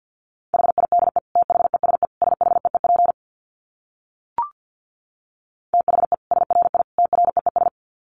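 Rapid Morse code at about 50 words per minute: a single steady mid-pitched tone keyed in quick dits and dahs, two bursts of sending split by a pause with a brief click.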